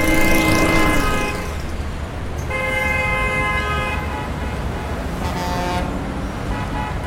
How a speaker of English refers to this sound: The bus ride ended by the edge of a dusty road. Cars and trucks and motorcycles poured past with much honking.